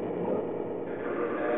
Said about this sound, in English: Do you hear the train now?